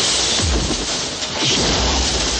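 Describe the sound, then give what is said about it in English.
A loud, dense crash of a man being thrown through a glass window during a fight, with shattering and clattering debris filling the whole moment, continuous, no talking. “He throws a guy through a glass window.”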